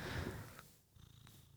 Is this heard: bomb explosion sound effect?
no